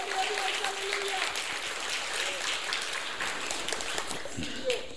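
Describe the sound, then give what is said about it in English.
A church audience claps their hands for the Lord in sustained, dense applause, a steady wash of many overlapping claps at a fairly loud, even level for several seconds, with faint voices and cheers mixed in. “All right, would you give the Lord a great hand clap for that right now?”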